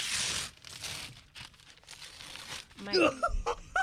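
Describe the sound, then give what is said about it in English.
Gift wrapping paper on the big present rips and crinkles in several loud, ragged bursts as it is torn open to reveal a Spider-Man PlayStation. An excited voice exclaims with high, rising tones near the end. “We're not saving the paper.”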